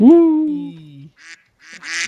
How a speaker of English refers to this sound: Who let the ducks in? What did the mug say? What did the duck say? Quack, quack, quack, quack.